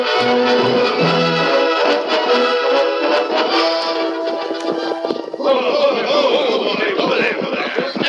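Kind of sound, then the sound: animal, horses galloping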